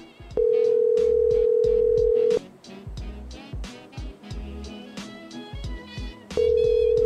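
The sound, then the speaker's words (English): A loud, steady telephone tone from a mis-dialed call, after the wrong button was pressed, holds for about two seconds, cuts out for a stretch of busier rhythmic clicks and tones, then sounds again at the end, like a call that won't go through. “Your call cannot be... Pressing the wrong button.”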